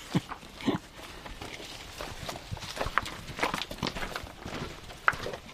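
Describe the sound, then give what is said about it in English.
Weka birds feed on feral goat meat and moist bread, with irregular pecking taps, scuffling footsteps and rustling on the ground, and a few brief squeaky calls breaking through; no one speaks. “God, there's weka everywhere,”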